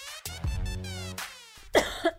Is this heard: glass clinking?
no